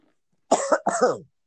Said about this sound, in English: Hold on. Let me cough real quick.